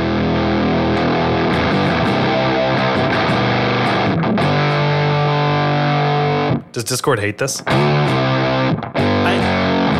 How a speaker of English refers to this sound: The Star Eater from Pigtronics. Switch it over to germanium. Okay, but for real though. So I've got the fuzz kind of at noon and the volume's just where it is.